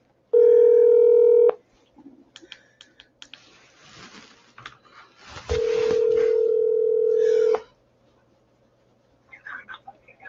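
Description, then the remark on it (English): Two long, steady electronic telephone tones as a phone call is dialed, one at the start and another midway, with quiet clicks and shuffling between them and a few soft sounds near the end. “Let me get old Stan on the phone here.”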